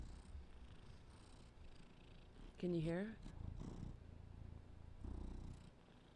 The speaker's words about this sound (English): He's a purr machine, this cat. He never stops purring.